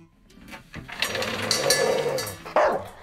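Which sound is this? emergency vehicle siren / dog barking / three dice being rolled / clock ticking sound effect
dog barking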